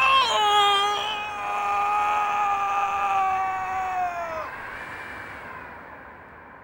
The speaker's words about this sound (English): I truly had hoped we were not that close to the edge. His scream still echoes in my ear. He fell headlong through the racking smoke and steam into the fathomless, seething cauldron below.